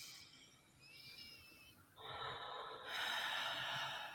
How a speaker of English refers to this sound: we're just going to start with taking a couple big breaths. Let it out through your mouth and just let your head sink into it.